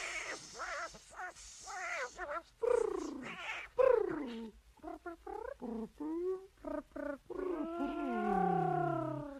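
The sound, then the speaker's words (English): A cat meows repeatedly, a quick series of bending, whiny calls that ends in a longer, drawn-out yowl, with no talking. “Come out, come ye out, my pretty kitten, meow.”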